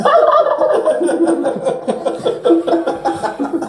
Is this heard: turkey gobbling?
yes